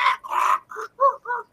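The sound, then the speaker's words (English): A voice imitates a squawking rubber chicken with a quick run of about five loud, nasal squawks, rising and falling in short bursts with brief gaps between. “Oh, she just needs one of those comical rubber chickens that makes the squawk.”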